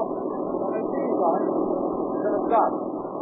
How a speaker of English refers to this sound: Here comes the car down the road now.